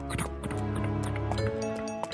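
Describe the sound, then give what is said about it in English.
Horse hooves clomp in an uneven series of hard knocks through the streets of the Breeze Top, layered over a steady background of murmuring voices and sustained tones. “You follow the unmistakable sound of horse hoof clomping.”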